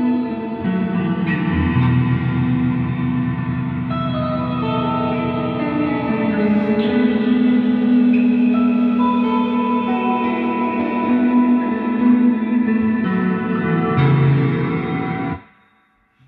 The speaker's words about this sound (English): Things, so it's like, let's see, like a little bit of chorus on your reverb. Ooh, I like that.